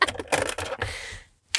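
Small plastic lip gloss and lip balm tubes rustle and clack together in several quick, busy bursts as they are counted, a brief quiet gap, then another clatter at the end.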